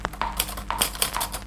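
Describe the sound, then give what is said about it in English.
Typewriter keys clack in a brisk, slightly uneven rhythm, about nine sharp strikes in quick succession, some with a faint metallic ring, with no voices. “I love the fact that you've got the constant sound of typing playing through, because that is actually one of the best things about typing, is the sound, the satisfying.”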